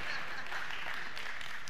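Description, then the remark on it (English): An audience claps steadily for under two seconds, a dense, even patter of many hands with a bright, hissy texture and no pauses or rhythm. “Oh, you don't have to clap for that, bro.”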